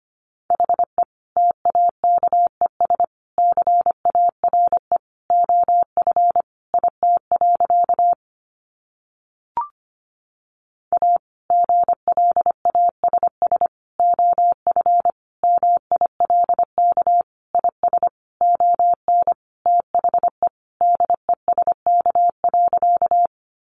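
Rapid Morse code at about 25 words per minute: one steady mid-pitched tone keyed into quick dots and dashes, two long runs broken by a brief silent pause.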